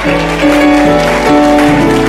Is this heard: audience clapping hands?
yes